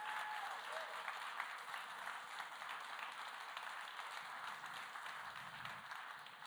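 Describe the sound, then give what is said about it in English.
A crowd applauds steadily for about six seconds, a dense, even wash of many hands clapping at once, with faint cheers and voices mixed in and no pause or fade. “If that's you, come on, clap your hands and make some noise.”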